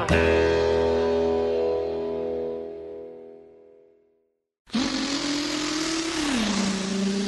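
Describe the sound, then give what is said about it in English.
A ringing musical chord fades into a brief silence, then the loud, steady roar of cars revving in a drag race down Main Street cuts in, the engine pitch sagging lower near the end. “Hey, come on, man, they're dragging down Main Street.”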